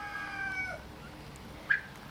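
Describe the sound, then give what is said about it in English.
Turkeys call in their pen, a group of 11 toms and females: a drawn-out, reedy call fading after a moment, then a single short, sharp squawk after a pause, with quiet background and no talking. “The bigger ones are the toms, and the more plain ones are the females.”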